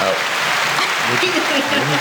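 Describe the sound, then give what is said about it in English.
A steady wash of applause sound effect, pressed by a host, dense crowd clapping at an even level for about two seconds, with voices talking underneath. “I think it was the clapping one.”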